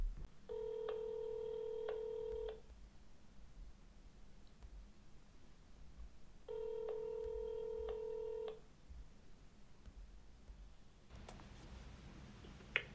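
A phone line rings out twice, each ring a steady two-second electronic tone separated by a pause, followed by a faint click and rustle as the call connects. No voices. It is a phone call to a person in Seattle for an interview.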